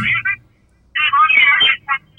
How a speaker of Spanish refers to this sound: No, fue que se fue el internet del teléfono y volvió ahora, tranquilo.